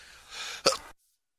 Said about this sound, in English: Sorry, I had to sneeze.